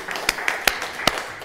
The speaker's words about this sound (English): So we're so grateful, and welcome to our grand opening, right? So it's been, let's give Jesus a hand clap for that, you know?